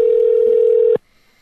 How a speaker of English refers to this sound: So okay, let's make another phone call here.